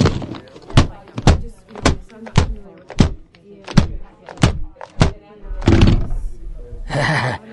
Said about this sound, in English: Oh, but first, I forgot my morning ritual of smashing my keyboard on the desktop.